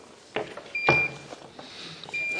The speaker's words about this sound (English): Now it's beeping more.